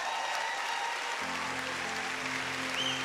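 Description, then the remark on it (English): A church audience at Celebration Church claps steadily for Jesus, a dense, sustained wash of many hands applauding together, with a low hum or organ tone entering partway through beneath the clapping. “So I have to believe that God has been better to you than that applause.”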